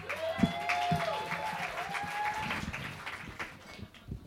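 An audience claps and cheers steadily for themselves, dense applause with whoops and whistles rising over it, loud throughout.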